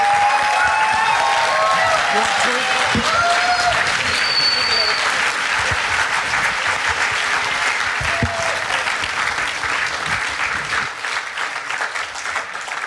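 A large audience claps steadily and loudly for over ten seconds, a dense wash of hand claps with scattered shouts and cheers mixed in, tapering slightly near the end.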